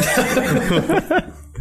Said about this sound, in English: Who's there? Who's coughing in the wind?